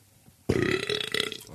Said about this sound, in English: that is really awesome that I just burped right there. You know what? Hold on, I gotta bring the Woodwick in because that was a little stinky.